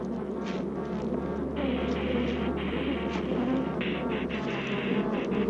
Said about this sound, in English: Even as Dr. Gary left the hive area, the bees persisted in their attack. Killer bees will pursue a victim great distances, stinging all the way. Killer bees don't calm down easily.